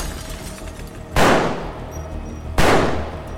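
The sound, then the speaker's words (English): Two loud gunshots from a Magnum revolver fired into a car, about a second and a half apart, each a sharp crack trailing off into a lingering decay over a low background rumble. “After his first two shots, which hit the journalist in the chest, she twisted, collapsing onto her front on the passenger side.”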